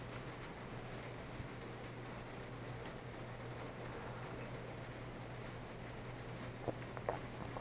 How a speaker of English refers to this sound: The rain is picking up hard.